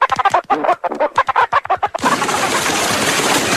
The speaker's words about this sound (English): Quack, quack, quack.